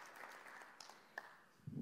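An audience claps in a steady, dense patter of many hands that holds for a couple of seconds at a fairly soft level, ending with a low thump.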